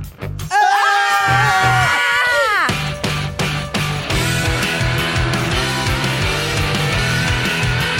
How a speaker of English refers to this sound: Scream to end it. Scream to end it.